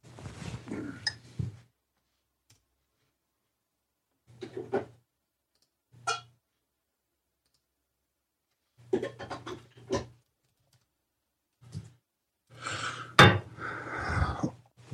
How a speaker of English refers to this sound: I need to pour some coffee here.